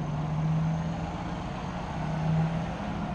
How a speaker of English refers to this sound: The new Metrobus corridor runs in both directions on the longest avenue crossing Mexico City. The 12.5-mile stretch on Insurgentes Avenue has 36 boarding stations. On a rainy Friday afternoon, the buses stopping at this station are packed.